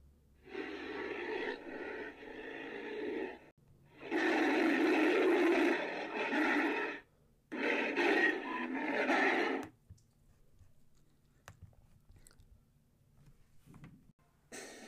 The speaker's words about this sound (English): This version of King Kong was voiced by a lion and tiger roar played in reverse.